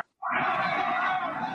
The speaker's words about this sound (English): Because I want people to hear this crowd reaction right here. This is amazing. Just this whole segment right here.